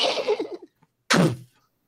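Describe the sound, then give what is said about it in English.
A voice imitates a horse collapsing: a drawn-out, wavering groan, then a short pause and one heavy, breathy thud-like burst that quickly fades. “what the hell is that? Sounds almost like a horse keeling over.”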